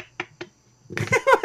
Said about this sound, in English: I like the clapping. That was a nice touch.